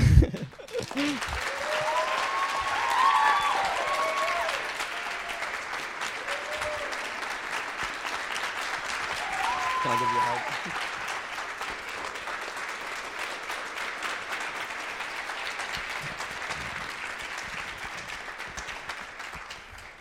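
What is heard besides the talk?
audience applause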